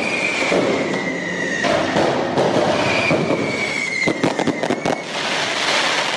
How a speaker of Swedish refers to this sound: Det där vi hörde, det var ju fyrverkerier, men det var väl inte för att fira PSGs ankomst till Barcelona direkt. Nej, det var ju supportrarna som ville störa PSG vid hotellet i natt.